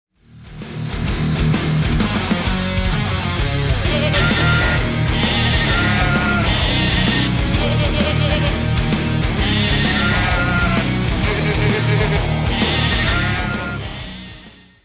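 Goat bleats chopped and set into an upbeat music track, the bleating repeating rhythmically over a steady beat and bass, loud and continuous with no talking.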